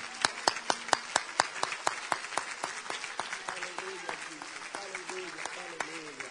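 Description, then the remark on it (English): A crowd claps hands at a preacher's call in a steady, quick rhythm, sharp loud strikes repeating evenly throughout, with voices rising underneath in the second half. “But if you know that he heard you and you know that he's going to answer, I want you to clap your hands just a little louder, just a little longer in the house today.”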